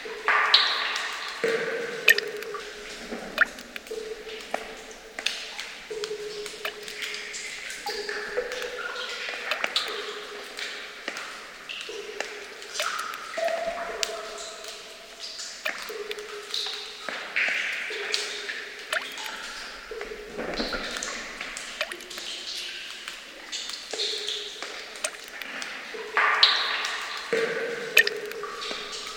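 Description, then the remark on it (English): Water drips steadily into pools in a cave, many drops overlapping in an irregular, resonant chorus of plinks and echoing pings, clear with no voices; recorded by Jean-Luc Harel. “It's the resonant chorus of water dripping into pools in a cave recorded by Jean-Luc Harel.”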